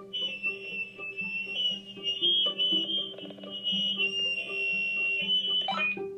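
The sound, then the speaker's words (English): A pet parrot named Toenail mimics an electronic alarm, holding a shrill, steady beeping tone over stepping lower pitches for several seconds. It sounds loud, and no one speaks. “Yep, that's my parrot, and stop beeping.”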